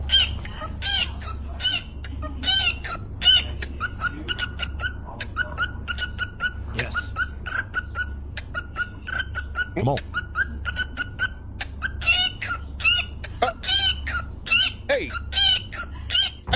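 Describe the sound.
A cockatiel chirps and whistles along to a beat in quick, repeated bursts over a steady music beat with a deep bass hum, fairly loud throughout; a person speaks briefly.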